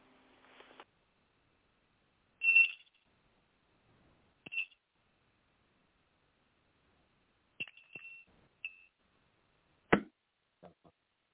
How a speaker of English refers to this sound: I am bell challenged tonight. Yes, we've had bell issues with the kind of bell that we use. We're not the best bell ringer, so we could never be those people that ring those bells.